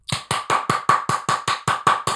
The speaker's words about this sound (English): Opened up the door to Dwayne's dressing room. Booty clap sounds.